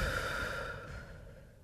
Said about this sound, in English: Okay, let's breathe first. Close your eyes and breathe. Air in, deep from stomach, and then out. But then don't hear you breathing. Come on, really breathe. Breathe in. Out.